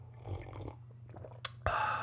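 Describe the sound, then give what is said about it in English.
Wet mouth sounds of someone sipping and swallowing water, with a brief sharp click and then a burst of breathy noise, over a steady low hum. No one speaks. “Gonna take a sip of water.”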